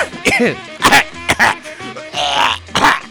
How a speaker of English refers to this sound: Oh, man, I'm becoming an old man. You hear that? I was laughing, and I started coughing like an old person.